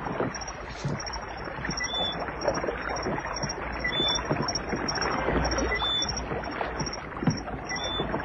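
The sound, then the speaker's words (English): Oars of a rowboat dip and splash steadily through water as a man leaves in the boat, a continuous wet churning with rhythmic strokes, with a faint high whine running above it. No one speaks. “You'll never hear us swimming against the splash of his oars.”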